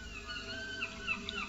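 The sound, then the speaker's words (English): Faint seagull cries drift over a steady low rumble of background noise at the edge of the English Channel, a few thin high calls rising and falling across the short stretch with no talking. “Ooh, I hear some seagulls.”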